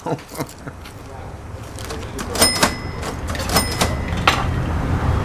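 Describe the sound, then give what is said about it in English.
The sticky door of Casper's shop is shoved open in a few hard pushes, its frame scraping and letting out two sharp squeals between knocks and clunks, over a steady background rumble. “The door definitely needs help.”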